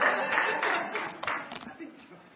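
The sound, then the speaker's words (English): Scattered, hesitant clapping from an audience, a loose patter that thins out and fades over a couple of seconds, with a few sharper claps standing out and a faint murmur of voices. “Scared. Y'all scared to clap, huh?”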